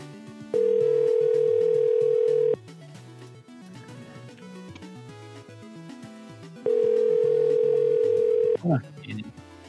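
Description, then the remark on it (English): A phone line rings out unanswered: two long, steady, mid-pitched ring tones about four seconds apart, loud over a quieter bed of background music. “isn't picking up yet, but we'll come back to him.”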